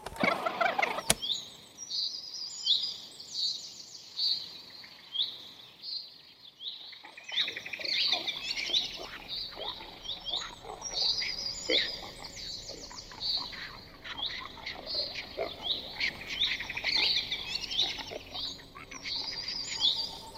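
A dense chorus of birdsong recorded outdoors with a tape recorder and played back, with many overlapping chirps and trills repeating continuously, somewhat thin and hissy like a playback of an old tape.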